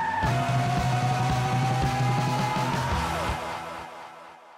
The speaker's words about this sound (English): He salutes, and the van speeds off into the distance.